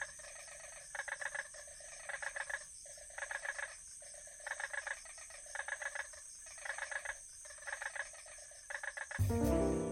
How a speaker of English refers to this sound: The next time I went to Bali, I stayed in Ubud, out in a rice field, and there was a little lotus pond, and it also had some pretty nice frogs.